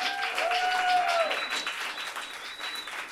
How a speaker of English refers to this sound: We'll be bringing four of them up on stage for a conversation later for part two of our program, but I wanted to give them a shout out right now so we can give them a round of appreciative applause.